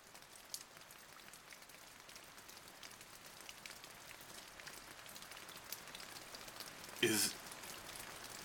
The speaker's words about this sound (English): Is that? It's raining. It's raining. Ha! It's raining! We're saved.